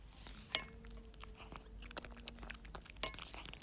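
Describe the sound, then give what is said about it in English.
Crisp crunching as food is chewed, with sharp irregular bites and crackles repeating every second or so over a quiet background, no voices. “Are you chomping on those delicious morsels? Are you crunchy on those gizzards and giblets?”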